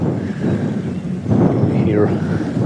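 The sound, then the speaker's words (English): Heavy wind buffets the microphone in a continuous low, roaring rumble that swells louder halfway through, blustery, with no break across the whole stretch, on a riverbank during fishing. “That wind is nasty.”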